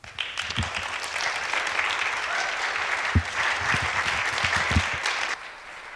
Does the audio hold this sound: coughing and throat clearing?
no